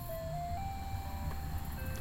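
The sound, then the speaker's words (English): An ice cream truck jingle plays a simple tinkly melody of sustained tones over a steady low rumble of outdoor and engine noise, with no one talking. “That must be the ice cream truck I passed earlier, coming to make the rounds over here.”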